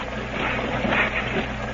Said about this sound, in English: Hey, there's another patrol boat headed this way.